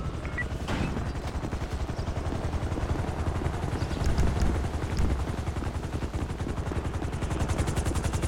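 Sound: helicopter flying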